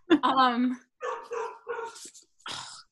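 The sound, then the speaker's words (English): A female dog barks, starting with one long, drawn-out yelping bark followed by three or four shorter, rougher barks in an uneven rhythm, with brief silences between them. “I'm gonna, okay, sorry, brief intermission to comfort my dog.”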